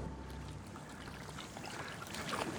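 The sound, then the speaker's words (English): Kayak paddle strokes dip and splash over a steady wash of moving water as the kayaker paddles with the tide in San Francisco Bay, with no voices present. “So I am now paddling with the tide.”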